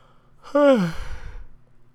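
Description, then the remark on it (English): A single drawn-out yawn from a person lying down: a loud voiced onset whose pitch slides downward, trailing off into a soft, breathy exhale, with no talking around it. “I think I'm yawning because I'm also laying down.”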